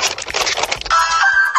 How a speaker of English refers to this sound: Here's a clip of the officer ringing the doorbell with the food.